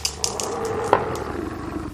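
A wolf growls in a low, steady rumble that holds for the full two seconds, fairly loud, with a few brief sharp clicks over it and no voices.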